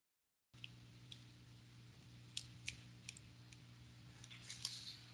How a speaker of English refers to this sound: Oh, it's a bit of clicking on the line there that's coming from you. Oh, sorry. No problem. Not sure why.